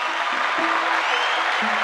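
A crowd applauds steadily, a dense wash of many hands clapping at an even, fairly loud level with no pauses, for the person who asked the week's big question, while a faint low tone hums underneath.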